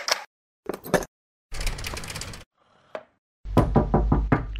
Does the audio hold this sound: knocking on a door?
yes